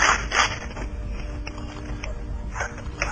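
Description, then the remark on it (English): A shotgun is racked: a couple of sharp metallic clacks and sliding scrapes near the start, then more clicks near the end, over a steady low rumble. “You hear the shotgun clicking, and I'm going.”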